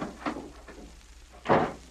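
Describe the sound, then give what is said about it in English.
A door bangs open with a loud, sudden burst, preceded by a few softer knocks and rattles, with no one speaking. “The door burst open and Mike stood facing him.”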